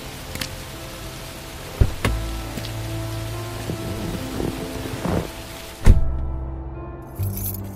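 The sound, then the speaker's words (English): Steady rain hisses throughout over a city as a storm brews, with a few deep, muffled rumbles of thunder rolling in, the loudest near the end as the downpour briefly cuts out. “Something's going on in this city. A storm's brewing.”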